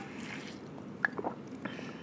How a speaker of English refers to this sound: Get used to that sound because I'm going to be drinking water a lot.